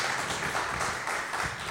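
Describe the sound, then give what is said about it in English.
A crowd applauds steadily at the Hump Day Exchange event after a panel, the dense patter of many hands clapping at once holding a constant level throughout the short stretch, with no voices standing out. “So round of applause”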